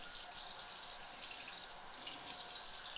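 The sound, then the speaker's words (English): Water runs steadily from a kitchen faucet with a continuous hissing splash, even for the whole stretch, with no talking over it. “Coming out of the faucet.”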